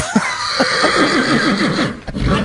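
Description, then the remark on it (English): A pony whinnies in a long, quavering neigh with rapid up-and-down pitch wobbles, loud, trailing off into a snort with no voices present. “I got my pony outside.”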